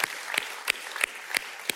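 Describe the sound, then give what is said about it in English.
An audience applauds middle school students, a wash of scattered clapping with sharper claps landing in a steady, even rhythm about three times a second. Moderately loud, with no talking. “Yeah, we give a clap for our middle school students.”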